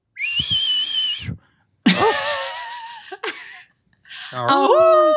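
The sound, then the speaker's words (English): A wolf whistle, or a close imitation of one, from a hallway: several loud whistling bursts with swooping pitch, split by short pauses, with no talking. “She was looking herself over in the full-length mirror fixed to the inside of the closet door when she heard a wolf whistle from the hallway.”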